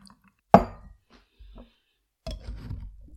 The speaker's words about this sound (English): All right. I'm going to pour it into a shaker, which already has ice.